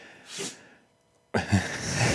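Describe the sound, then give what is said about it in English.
A dog sneezes: a short, soft breathy puff, a brief pause, then a louder, harsher snorting burst that trails off noisily. No one speaks. “our dog sneezing”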